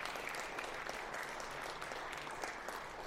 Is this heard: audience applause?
yes